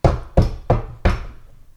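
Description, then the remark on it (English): Four heavy, hollow clunks of a clunky binder, used to imitate a paper-shuffling noise, land in quick succession, each a loud thump with a short ringing decay, the last trailing off longest. No one speaks. “been working on trying to make a shuffling noise for the club bulletins, but she uses a different clunky binder every time.”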